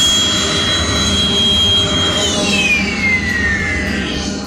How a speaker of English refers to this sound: And then the engine startup button that you heard also works as the shutdown. You hit it again.